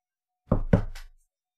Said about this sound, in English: Suddenly there's a knock at the door. Who could be knocking?